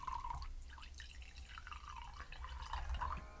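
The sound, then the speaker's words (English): Wine pours steadily into a crystal glass, a bright gurgling trickle with a rising ringing tone as the glass fills, continuing without a break for a few seconds. “It feels weird to pour wine in the in these crystals.”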